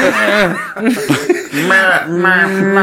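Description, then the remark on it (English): A person imitates a cow with a series of drawn-out, wavering vocal moos, fairly loud, ending on a longer, steadier low call. “Do they know it's a cow, or do they think it's some weird, strange character you've created?”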